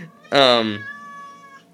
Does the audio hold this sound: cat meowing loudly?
yes